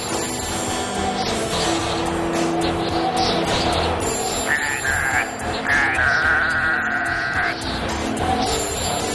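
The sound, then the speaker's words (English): Several goats bleat repeatedly in a dense, overlapping chorus, their wavering cries rising and falling over steady background noise. “And those goats are in tune.”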